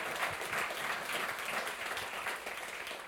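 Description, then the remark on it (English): A crowd applauds with steady, dense hand clapping that holds at an even level for the full few seconds, with no voices standing out over it, giving the Lord a big hand clap on a Wednesday night. “Go ahead, give the Lord a big hand clap on this great Wednesday night.”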